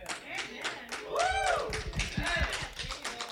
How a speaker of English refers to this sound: The wives are clapping, amen.